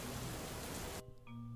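A dense, steady hiss of falling rain fills the first second, then cuts off abruptly, leaving only a quiet low hum and faint tones.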